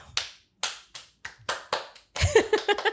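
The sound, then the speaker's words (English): A slow clap: about six sharp, separate handclaps spaced roughly half a second apart, speeding up slightly, followed by a denser, busier flurry of claps mixed with other sound at the end. “Slow clap worthy?”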